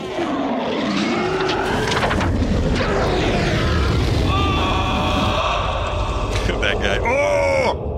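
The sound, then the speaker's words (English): A loud, roaring fire effect: a dense, steady rush of noise overlaid with shrill, wavering screeches and wails that bend up and down in pitch, swelling into a final piercing squeal. “Fire is screaming.”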